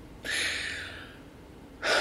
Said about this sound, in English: It was then that I heard. Not even a gasp. It was like a gasp, but not really. I don't want to describe it any more than that. There was a sound. It drew my attention further on.